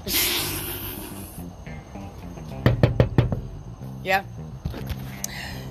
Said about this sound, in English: So, my boss told me, because we were still on the phone, and I was on the phone for a while, and my boss knocked on the door. I can't believe he knocked on the door.